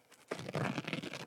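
A paper towel being ripped: a crisp tearing rasp lasting about a second, starting abruptly and holding steady with rough crackly texture before cutting off. No voices.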